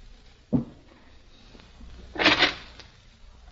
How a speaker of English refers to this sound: don't slam doors that way. Ethel's sleeping.